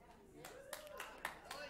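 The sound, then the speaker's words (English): A few scattered, irregular claps from an audience, with a faint voice murmuring underneath. “You're clapping now.”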